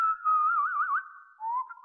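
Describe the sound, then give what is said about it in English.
A grandfather whistles a short, wavering tune, the pitch sliding and warbling up and down before settling on a lower held note; clear, with no talking. “Grandpa, well, he started to whistle.”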